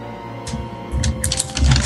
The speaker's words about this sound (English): A lot of paper rustling.